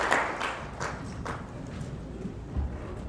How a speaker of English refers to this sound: Clap your hands together for the Lord and please be seated.